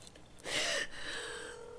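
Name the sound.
telephone being dialed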